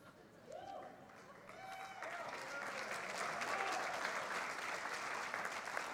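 A church audience at a morning worship service breaks into clapping that swells from scattered claps into steady, dense applause, with a few raised voices and whoops over the start.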